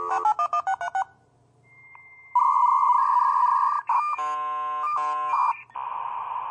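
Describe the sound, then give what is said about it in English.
A dial-up modem connects: a quick run of touch-tone dialing beeps, a brief pause, then a long stretch of loud, screeching, warbling handshake tones that shift abruptly in pitch before settling into hissy static. “let's first hear the sound of a dial-up modem connecting.”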